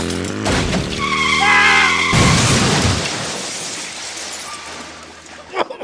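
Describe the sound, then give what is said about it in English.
An old Reitwagen motorcycle engine chugs loudly while tires squeal, then a sudden heavy crash bursts out, followed by rattling, scattering debris that slowly fades. “What is the problem with mine in Reitwagen? Where are the brakes?”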